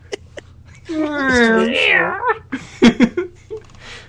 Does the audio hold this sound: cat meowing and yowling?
yes